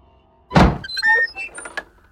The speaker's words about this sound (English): When he reached the door, he knocked on it.